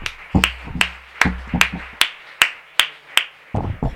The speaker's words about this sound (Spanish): Un aplauso al Señor.